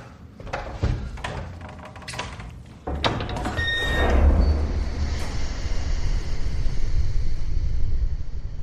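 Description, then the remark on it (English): Another heavy door, at the far end of the space, scrapes and clunks with several sharp knocks, then grinds open into a low, sustained rumble with a faint metallic squeal, fairly loud. “At the far end of the space, there was another door. Give me a hand.”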